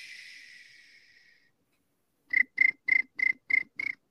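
A steady hiss fades into a short silence, then a cricket-like chirp repeats seven times in an even rhythm, each pulse bright, with no talking.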